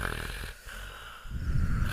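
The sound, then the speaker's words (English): Deep, heavy breathing, a rough, snore-like rasp that eases briefly and then swells again into a fuller, noisier breath, with no talking. “Yeah, bigger, deep down into the...”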